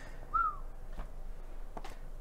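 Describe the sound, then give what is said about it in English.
One short, bright whistle from a person that rises and dips in pitch, a quick wolf-whistle-like call, followed by quiet background with a couple of soft clicks. “No wolf whistling at random ritual women. It wasn't a wolf whistle, but it was... It's close.”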